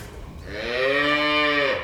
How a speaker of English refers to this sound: He's rounding up the last of the cattle to put out on his fields, which are now thick with new grass. There's several steers in here, three or four. I know there's one big one over in this pen, too.